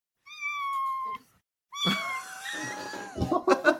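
A cat being picked up lets out two long, drawn-out yowls, the second longer and sliding downward in pitch before breaking into rough, strained cries with some scuffling noise.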